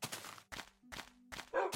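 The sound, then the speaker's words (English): A dog barks five times in quick, uneven succession, loud, with a faint steady hum underneath between barks. “Woof indeed.”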